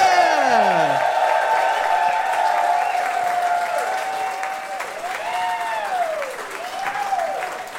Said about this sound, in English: Well, we're going to be joined on stage by two guests. Could you please give them a big round of applause now? You know them and love them.